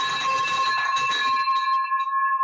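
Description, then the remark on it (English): A victory bell rings loudly to celebrate a first land deal, a bright clanging burst that settles into a sustained metallic tone and fades out over a couple of seconds, with no talking. “Well, let's pause for a second and celebrate that first land deal that you did with the victory bell.”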